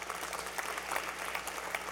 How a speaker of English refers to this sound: We baptized 55 people who are new to the faith. You should clap for that too.